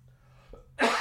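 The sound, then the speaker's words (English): A single loud, harsh cough from a person who is sick bursts out after a moment of near silence, with a faint breath just before it. “I've been waiting to cough forever.”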